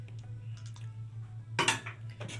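Dice thrown for attack rolls in a tabletop game clatter onto a hard table: a few faint ticks, then a sharp burst of rattling clacks and a second smaller clack, all over a low, steady electrical hum; one die came up a 3 and went off the table.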